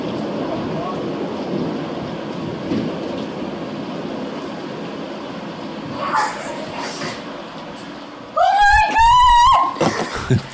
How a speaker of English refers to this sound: And she recorded it with her phone, and there's this lightning strike, and it's so loud, and you can hear them screaming.